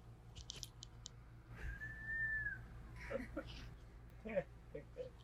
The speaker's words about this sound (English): just let off a whistle like, whoa, that is a hell of a question.